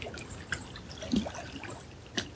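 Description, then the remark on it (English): Soft trickling water runs steadily, with small splashes and bubbling bursts rising now and then over a quiet, continuous gurgle. “The sound current of the water be yours.”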